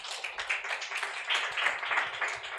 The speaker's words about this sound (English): Clap for him.